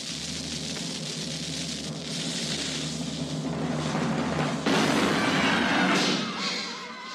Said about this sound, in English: shoot this thing as far as you possibly can. Fire the cannon!